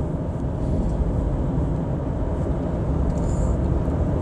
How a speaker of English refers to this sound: God, College Road is jammed right now.